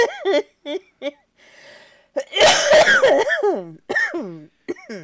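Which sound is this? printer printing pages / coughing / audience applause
coughing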